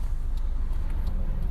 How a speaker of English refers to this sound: Well, so you have to wait for a gap coming from both sides, except all of the cars are going, like, 60 miles an hour. But the speed limit is 55, so that's contradictory.